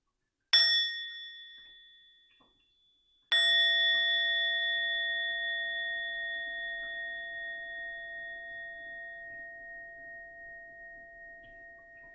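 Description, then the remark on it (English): A meditation bell is struck twice to conclude a meditation: a short first tap that fades quickly, then a fuller strike whose clear, sustained tone rings and slowly decays for several seconds amid quiet. “And we'll enjoy a sound of the bell to come to a conclusion of our meditation.”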